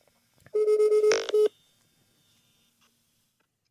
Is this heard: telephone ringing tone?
yes